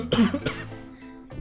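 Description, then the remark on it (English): A few harsh, sputtering coughs from someone choking on water they were drinking, followed by a brief throaty rasp as they try to clear their throat. “Sorry guys, I was drinking water, and I started. Choking.”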